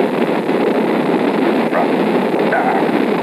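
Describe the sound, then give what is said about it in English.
Saturn V rocket engines roar at liftoff, building up to 7.7 million pounds of thrust as the rocket lifts off the tower, in a loud, steady, rumbling wall of noise that holds without a break for the whole clip. No voices are heard. “The engine's now building up to 7.7 million pounds of thrust. We have a launch commit and we have a liftoff.”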